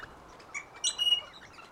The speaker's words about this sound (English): Whoa! I just saw this bright red flash out of the corner of my eye. I wonder what that was. Maybe a bird? Huh, disappeared. But I can hear some chirping and clicking that started nearby. Can you hear it?